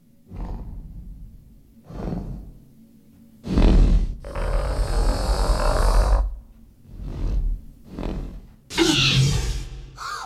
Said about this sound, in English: They enter the kitchen and they go find a place to hide. And nothing. Here it comes. A great snort at the door.